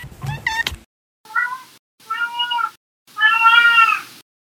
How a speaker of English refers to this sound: sometimes my cat Winston joins me.